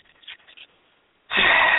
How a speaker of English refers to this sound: I'm breathing.